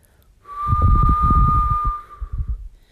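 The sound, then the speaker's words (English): A woman lets out a single low, slow whistle held steadily for about two seconds at one pitch, fairly loud, with a soft rumbling breathiness underneath and no talking. “let out a low, slow whistle she hoped would be mistaken for an ocean breeze squeezing between the tall, tightly spaced buildings.”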